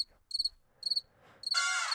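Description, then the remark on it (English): A crickets chirping sound effect played from a soundboard: crickets chirp in quick repeated bursts, a few distinct pulses followed by a louder, denser chirping swell near the end, with no talking over them. “Do the crickets. Crickets. There it is.”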